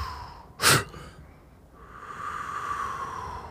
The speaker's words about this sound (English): Have you breathe slow first, mm-hmm. and then you work your way up? Doing yeah, yeah. Like so it was like slow fast. Breathing, and then a quick inhale.